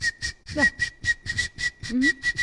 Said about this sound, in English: But like referee whistles, yes. Not mouth-made whistles, just full referee, like, you know, charging call whistles, mm-hmm. where it's very graphic, you know, very sure, very aggressive.